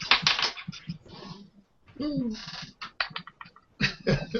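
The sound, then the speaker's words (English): Dice, dropped by accident during a tabletop game, clatter onto a hard tabletop in quick bursts of sharp clicks, pausing briefly before rattling again, with a short hoot-like vocal sound in the middle. “We've all dropped dice today.”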